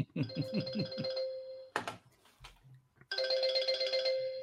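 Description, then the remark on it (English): An electronic phone ringtone plays a bright, tonal melody in two bursts separated by a short pause, with a brief clatter in between; fairly loud, with no talking over it. “that's Frank's phone, but or somebody's phone”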